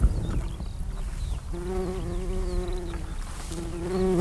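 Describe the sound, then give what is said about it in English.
Bees buzz steadily in an open field, a droning hum that rises and wavers as insects pass by, with faint outdoor ambience behind and no voices. “So if you hear things like birds and bees, well, that's not anything to do with all. That's some birds and some bees.”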